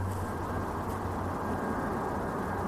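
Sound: aeroplane flying overhead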